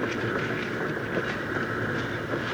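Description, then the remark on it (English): A train rumbles and clatters steadily on the rails as it is brought to a halt, a dense, continuous mechanical roar with faint hissing on top, with no voices. “Hold the train”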